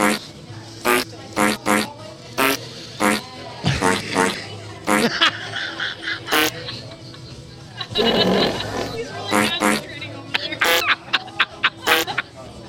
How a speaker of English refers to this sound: Is that a fart keyboard you found? It is. Nice. It can do burps.